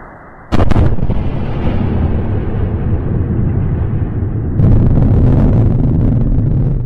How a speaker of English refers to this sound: So it's the first stage of SpaceX's two-stage Falcon 9 rocket. Yeah. Coming home after, you know, its work out there. They're getting ready to use it on a cargo run. And generated two separate sonic booms from four different angles,